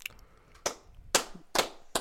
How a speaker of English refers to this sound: I'm clapping.